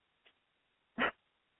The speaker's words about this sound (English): To anybody that's ever owned a parrot, you know my pain. They do whatever they want to do.